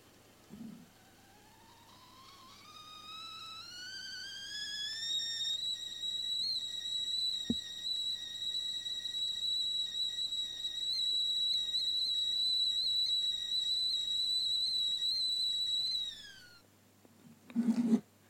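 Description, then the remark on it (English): A kettle's whistle rises steadily in pitch over several seconds, then holds a shrill, sustained tone before cutting off abruptly, with a faint click midway and a brief rustle at the end. “So here is the teapot kettle whistle.”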